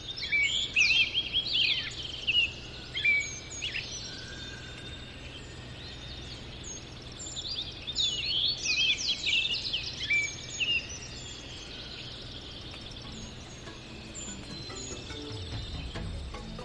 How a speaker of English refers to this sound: And then in the morning, starting at a nautical twilight, which is just the very crack of dawn, I'll record 90 minutes of what will be the dawn chorus, which is when all the birds wake up and sing before they go out to forage for breakfast.